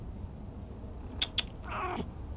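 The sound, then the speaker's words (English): A cat gives one short, soft meow, preceded by two quick faint clicks, with a low steady background hiss and no talking. “Kitty says hi.”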